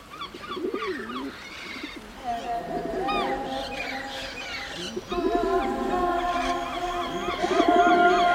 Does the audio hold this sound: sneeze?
no